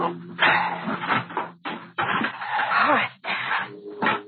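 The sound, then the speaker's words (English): A trunk lid creaks open and a body is shuffled and dumped inside, with a run of loud creaks, scrapes and thumps over a few seconds. “Put him in the trunk. Come on, hurry.”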